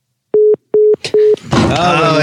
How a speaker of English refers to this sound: Is that a phone call coming in? There's a phone call coming in.